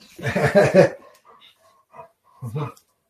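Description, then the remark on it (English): A dog plays with a toy, making a throaty, whining vocal burst followed by short, faint squeaky whimpers and another brief growly whine at the end. “Of course, my dog is over a toy.”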